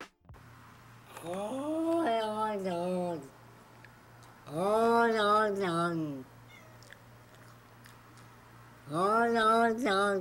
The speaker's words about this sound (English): I feel really bad. The cat looks like it's not having a good time.